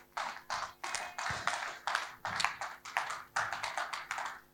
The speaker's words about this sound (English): You can clap your hands, church.